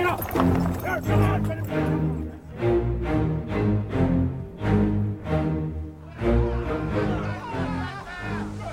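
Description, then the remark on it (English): Hooves clatter in a steady galloping rhythm alongside a rumbling wagon during an ambush, with several men shouting over the commotion throughout. “Knock them off the horses and the wagon.”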